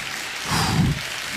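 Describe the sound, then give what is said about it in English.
A brief burst of applause, a dense patter of many hands clapping that swells slightly midway and then fades, with no voices over it. “And some clapping.”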